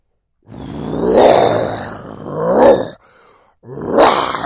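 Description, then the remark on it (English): A person imitates a big cat's roar with three loud, raspy, growling bursts. The first is the longest, then a shorter one, a brief pause, and a final roar. “Just in case you're in your cars, that was me, not a lion or a tiger or a bear.”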